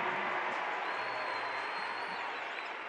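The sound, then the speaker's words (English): A large arena crowd at a Utah Jazz basketball game against the Pelicans cheers after a Rudy Gobert left-hand fadeaway basket makes it 54-53, in a steady, dense roar that holds for about three seconds, with a thin high whistle-like tone running faintly through it. “The crowd is egging on the Jazz to play with a little juice.”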